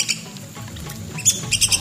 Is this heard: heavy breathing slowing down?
no